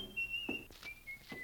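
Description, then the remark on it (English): A man whistles a tune after slamming the front door, in steady, high, sustained notes that glide slightly in pitch, with a few soft thuds and rustles underneath. “He slammed the front door, and he was whistling.”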